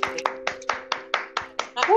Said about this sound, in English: You know what? I want to give a round of applause, to all the parents, firstly. I'm going to do my clap for the parents.